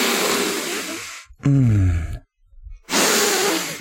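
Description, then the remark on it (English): A voice imitates a bat creature character aggressively sniffing up a rhino character's chest in a TV show scene: two long, harsh, loud snorting inhalations with a short, low, voiced grunt between them, and no words spoken. “Okay, there is another scene with the Garagi, and this is the scene where the bat guy aggressively sniffs the nipples of Rhino Guy.”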